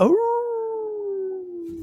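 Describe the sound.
A person lets out a single drawn-out wolf-like howl, a steady tone that slowly sinks in pitch, loud, with no talking alongside it.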